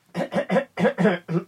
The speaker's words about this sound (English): Is it because of just the coughing? I don't know why I keep coughing, yeah.